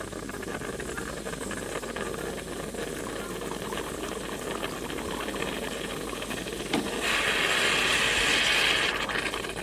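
An espresso machine pumps hot water through freshly ground coffee with a steady mechanical hum and rattle, swelling into a louder, brighter hiss near the end. No voices.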